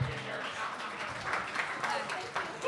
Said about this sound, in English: That's my agent. Clap it up for my agent.